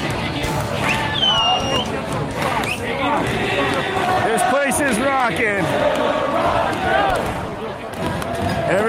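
A dense street crowd at a big evening party in the streets of Ottawa, Canada, clamors continuously, many people shouting and cheering over a steady barrage of irregular metallic bangs and thumps as everybody bangs on something, the whole scene loud and unbroken throughout.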